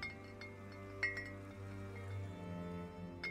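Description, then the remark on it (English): Glass bottles hanging from a tree are tapped by hand and clink and chime against one another in a few light, scattered taps, their bright ringing tones lingering briefly over a soft background hum. “I walk through them sometimes, tapping the glass and hearing them chime against each other.”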